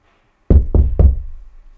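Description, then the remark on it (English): Three firm knocks on a wooden door in quick succession, loud, each with a low thud and a short ring that fades after the last knock. “Imagine Jesus standing at your door and he's going to knock and he says, "Listen, I'm standing at the door knocking.”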